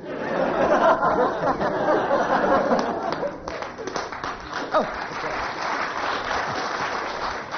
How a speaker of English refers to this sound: But it's always nice to end on rapturous applause.